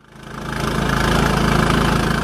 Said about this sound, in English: Boat heading upriver to the remote villages of the Chittagong Hill Tracks in southeastern Bangladesh.